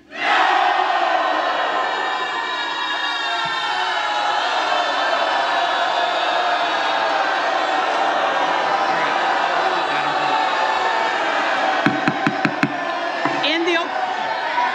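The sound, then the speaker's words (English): A large crowd of legislators in the House shouts together in a voice vote on a motion to adjourn, a loud, sustained roar that fills the whole stretch, with a few sharp knocks or bangs near the end cutting through the din. “Those in favor say aye. Those opposed, aye. Those opposed, no.”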